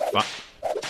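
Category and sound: sound effect, whip crack sound effect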